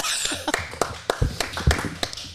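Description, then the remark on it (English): A short burst of scattered, uneven hand claps, like a small group applauding nearby, with a few sharper slaps standing out and no talking over it. “Clap for me, everyone.”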